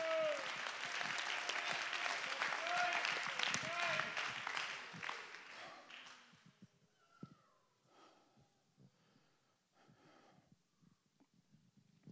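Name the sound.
audience clapping hands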